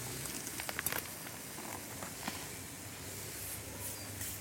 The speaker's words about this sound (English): And I'm going to flip these aubergines one more time. We're almost done. So another turn. Ooh, sizzle.